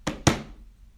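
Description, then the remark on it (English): Two firm knocks on a door, a fraction of a second apart, the second one louder, each a dull wooden thud that fades quickly into quiet. “It was Dashie's 18th birthday, and I was about to take her to the Daytona 500 until I heard a knock on the door.”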